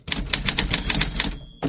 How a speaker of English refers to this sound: Okay, Paul, we're ready for the typewriter.